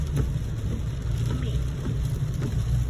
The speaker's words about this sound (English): It's very rainy out. Right there. Rainy all over the place.